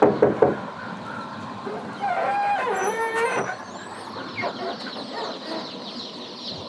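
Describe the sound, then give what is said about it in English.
Baby chicks in eight big boxes, being brought to a door, peep and cheep in a continuous high chatter over a steady rumbling outdoor background, with a brief squealing tone in the middle. “Ah, baby chicks. It even says baby chicks right on the boxes.”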